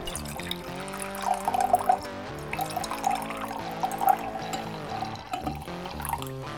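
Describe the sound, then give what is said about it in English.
75-year-old rum, once fermented in a barrel, pours steadily into a glass for several seconds, a continuous gurgling trickle with a faint ringing, pitched resonance, moderately loud, with no one talking. “I'll get the 75-year-old rum.”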